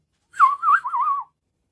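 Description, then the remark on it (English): A single human whistle, fairly loud, holding a warbling tone that wavers up and down for just under a second before stopping, with no talking. “Now that was a whistle.”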